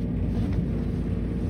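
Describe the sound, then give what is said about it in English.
The gears of an old lift grind as it descends deep into the earth, a steady, heavy low rumble that holds at an even, fairly loud level throughout, with a faint hiss above and no voices. “It was from a time before Muzak, so we were left with the grinding of gears as we descended further into the earth.”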